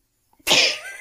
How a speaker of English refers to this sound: Bless you. Thank you so much. Sorry. Bless you.